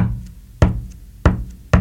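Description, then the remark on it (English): A kick drum beat drummed on a desk: three dull, low thumps playing three downbeats, with a resonant low ring between hits and no voices. “We're going to do some desk drumming for the first time in a while, and I'm going to do the kick drum on the desk and a little bit of clapping and snapping to illustrate the beat”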